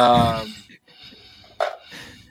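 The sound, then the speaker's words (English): A voiced, sigh-like exhale followed by heavy, rough breathing into a new microphone: a short pause, then two loud, gusty bursts of breath. “Who's breathing like that into their thing?”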